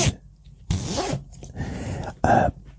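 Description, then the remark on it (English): A cardigan zipper being zipped up, heard as three quick raspy pulls: a brief one, a longer ratcheting stroke, then a final short tug, with quiet rustling between. “So I'm doing my zip.”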